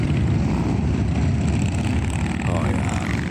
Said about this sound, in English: That is from the Manitoba Motorcycle Ride for Dad. Thousands of motorcycles rolling out from Polo Park to hit the road to fight prostate cancer.